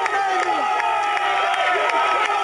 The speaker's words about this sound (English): We got to cheer them on. We got to help them get all the way up there. It's something we have to do. We try to push them and get them running. People are walking. They're hurting. So we give them all we can to get them going.